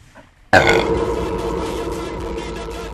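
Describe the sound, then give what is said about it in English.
A single long, loud burp erupts after a brief quiet moment, rumbling and droning steadily for a couple of seconds before slowly tapering off. “Sorry, I have to burp.”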